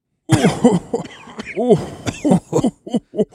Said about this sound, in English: began to cough. And his cough slowly turned into a giggle.